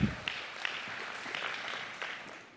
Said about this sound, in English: But when push comes to shove, we have a much better teammate named Jesus who has already provided for us lavishly. We can clap about that.